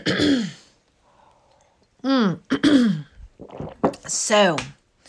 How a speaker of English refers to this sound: So let me clear my throat. All this cleaning and moving stuff has moved a lot of dust.